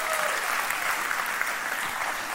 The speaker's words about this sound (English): You give them a big round of applause, man.